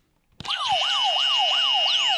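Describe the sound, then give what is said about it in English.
Several electronic game show buzzers, used by comedian contestants to buzz in and answer questions, blare at once, a loud steady tone layered with repeating rising, siren-like sweeps that kick in abruptly and keep going, with no talking. “To answer the questions for points, comedians must buzz in using our high-tech buzzer system.”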